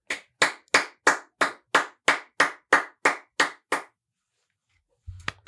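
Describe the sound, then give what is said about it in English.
A single person claps about a dozen times in a steady, brisk rhythm, each clap sharp and crisp, then stops; a soft low thump follows after a short silence. “Can I clap or no? Sure, you can clap.”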